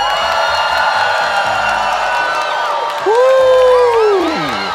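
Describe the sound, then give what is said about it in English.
A large live audience of about 1,000 people at the Oriental Theater in Milwaukee cheers loudly and steadily, with high whoops and rising and falling shouts cutting through the dense roar, which swells again near the end. “Oh my God, what a crowd.”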